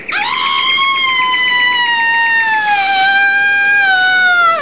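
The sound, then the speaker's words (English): A single long, piercing panic scream held at a shrill, steady pitch for several seconds, loud, sagging slightly toward the end, with no talking around it. “This is my panic scream.”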